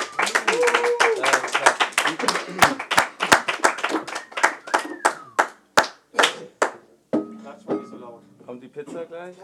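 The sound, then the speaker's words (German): Rapid hand clapping, sharp and fairly loud, that gradually slows and spreads out into separate claps before stopping, after which a voice speaks briefly. “Klatschst du für dich selber?”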